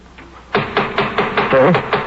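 A steady run of about seven firm knocks on a door, close and fairly loud, beating in a quick even rhythm after a brief quiet moment.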